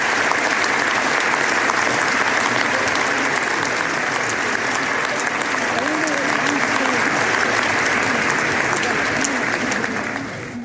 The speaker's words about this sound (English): Special was that, everyone? Let's hear another round of applause